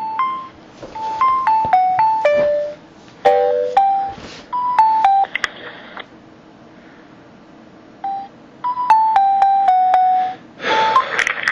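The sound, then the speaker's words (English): A phone ringtone plays a bright electronic melody of short stepped notes, repeating its phrase twice, pausing, then starting again before a sudden noisy rustle at the end. No one speaks. “Nice fucking ringtone.”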